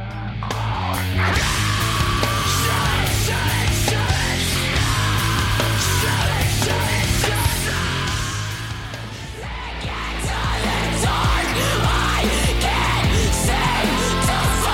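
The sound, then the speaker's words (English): A loud, dense heavy rock track in an alt-metal, nu-metal style, with distorted guitars and pounding drums, a raw screamed vocal tearing through the mix, briefly easing around the middle before the full-band wall returns. “And then how about the screaming bit that you caught? That reminds me of the sort of like alt metal, new metal sounds”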